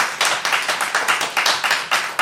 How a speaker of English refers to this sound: Animal gets applause.